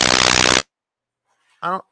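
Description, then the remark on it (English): A harsh, dense burst of crackling clicks from interference on a remote caller's phone line fills the first half-second, then cuts to silence before a brief fragment of a voice. “You got clicking on your side.”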